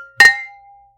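A single bright clink of glasses of California rosé wine touching in a toast, followed by a clear, high ringing tone that fades away over about half a second. It is fairly loud, and there is no talking.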